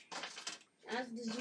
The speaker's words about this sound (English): Let's roll a dice, shall we?